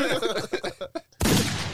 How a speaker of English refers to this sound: That's another gunshot.